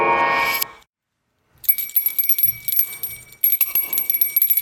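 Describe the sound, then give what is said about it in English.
A short musical jingle introducing a top-five segment: a brief full-bodied burst, a moment of silence, then bright, shimmering bell-like chimes ringing in quick repeated strikes, fairly loud, with no voices. “So you probably heard, the top five song that played just now, or the top five little interstitial bit, I accidentally put it in there twice,”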